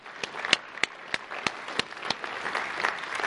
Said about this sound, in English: If you're a clapper, that's worth clapping.